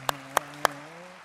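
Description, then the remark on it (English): A church audience on Father's Day claps three times in unison, sharp and evenly spaced in a quick rhythm, with a faint steady hum lingering underneath and no one speaking. “Oh, we'll do a foot clap again.”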